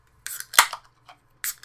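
Sharp metallic clicks and a brief fizzing hiss as pint cans of The Hop Experience ale, 8.1% alcohol by volume, made in Corvallis, Oregon, are cracked open: two quick pops close together followed by a third a moment later, with no talking.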